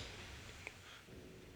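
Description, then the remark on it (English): A single quick mouse click while clicking back through a list of episodes sounds once, midway through, sharp but quiet over a low steady hum, with no voices. “If I go all the way back, there's a lot of clicking here, but if I go all the way back and again back, wow, to episode 11.”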